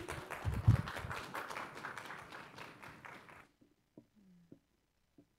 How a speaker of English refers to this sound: Round of applause from all of us, eight people here with big hands.